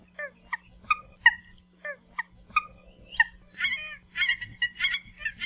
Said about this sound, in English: You can now occasionally hear the honking calls of the nene on most main Hawaiian islands, especially if you're near ponds or grassy fields.